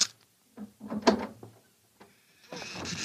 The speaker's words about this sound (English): Murdoch, open that box.